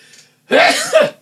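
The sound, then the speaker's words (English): A single loud sneeze bursts out after a brief quiet moment, a sharp breathy blast lasting about half a second with a voiced tail. “I didn't sneeze all over the chocolate.”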